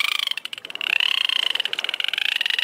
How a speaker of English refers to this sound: Thanks to technology, researchers are beginning to decipher dolphin language, the chirps and clicks that come from their blowholes.